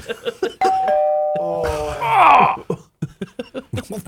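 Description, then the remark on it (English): A doorbell chimes clearly with sustained ringing tones, followed by a voice crying out in a groaning wail, with speech before and after. “If the sound of a doorbell frightens these kids, what are they going to do if they ever have to fight a war?”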